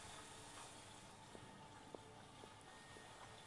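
Quiet water bubbling over a steady hiss, with a few soft pops and gurgles scattered through it. No one speaks.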